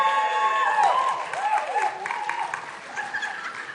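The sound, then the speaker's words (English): A church audience applauds Pastor Segre for his excellent work, with steady, dense, continuous clapping mixed with a few whoops and cheers rising above it, for under four seconds. “See, they clap for you, man.”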